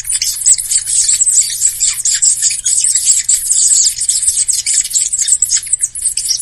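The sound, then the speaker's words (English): A VCR rewinding a videotape: a dense, continuous high-pitched rasping chatter with a faint low hum underneath, steady throughout with no voices. “That's a VCR. Like this wildlife sound. When you rewind the tape, it's a rewind button.”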